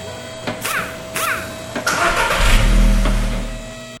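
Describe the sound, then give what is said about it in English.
A car engine cranks with a couple of whirring starter bursts, then catches and turns over into a steady, low rumble that swells as it revs slightly. “And Superior Car Care, 110 Florence Drive, here in the ATH Athens, Georgia, is how we managed to keep our wind-up tangerine-colored vehicle out there on the road.”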